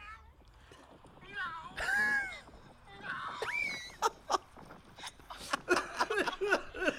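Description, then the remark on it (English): A person imitates a cat with drawn-out, wavering meows, several rising and falling calls in a row, fairly loud, followed by sharp bursts of laughter or excited sounds. “Okay, now listen to the meow. Here it is.”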